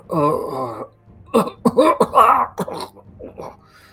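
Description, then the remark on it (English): A voice imitates a man, just brought back to consciousness, coughing up blood: a drawn-out groan, then a burst of harsh, sputtering coughs and throaty hacks, fairly loud, fading into weaker gasps. “He's coughing up blood.”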